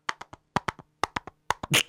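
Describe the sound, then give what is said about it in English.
Chair stoppers held in the hands are clacked together in quick groups of three, a da-da-dum galloping rhythm of hollow taps like a horse's hooves, repeated four times with short pauses, ending in a slightly longer scrape. “It sounds like a horse riding.”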